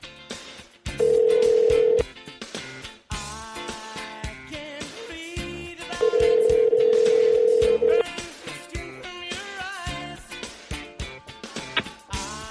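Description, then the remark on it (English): A phone call rings out over the line: two steady, loud ringback tones about four seconds apart, each lasting a couple of seconds, with quieter background sound in between. “Come on, phone. Here we go.”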